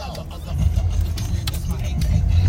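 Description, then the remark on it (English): A car drives past on a hilly road in Georgia, its low engine rumble and road noise steady and slowly swelling over a couple of seconds, with faint voices underneath. “No, there's a car now.”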